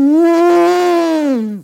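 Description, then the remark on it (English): A single loud, sustained vocal blast, a person imitating an elephant's trumpet with an arm held out like an elephant trunk: bright and brassy, holding steady for over a second before dropping off sharply at the end. “Then I put my arm out like an elephant trunk and make this sound.”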